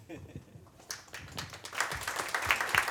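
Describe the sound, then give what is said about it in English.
An audience breaks into applause that swells over a few seconds, a dense wash of many hands clapping, with some indistinct voices mixed in. “I want you to keep the round of applause going”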